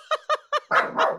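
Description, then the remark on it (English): A dog barks at children who have just come home, three quick, sharp times in a steady rhythm, then a longer, rougher bark, all loud with no talking. “The kids have just come home and the dogs noticed them.”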